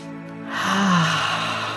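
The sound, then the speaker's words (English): A slow, deep breath drawn in audibly, a soft airy rush that swells over about a second and lingers, with no talking. “Let's just at this point take one beautiful deep breath, breathing in.”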